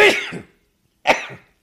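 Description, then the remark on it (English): Two loud sneezes about a second apart, each a sharp explosive burst trailing off into a strained, pained-sounding exhale, with silence between them and no talking; the sneezer has sciatica pain in the hip and leg, which makes sneezing painful. “I had a back thing I'm getting over, and now I have the sciatica pain in my hip and leg, and sneezing is extremely painful.”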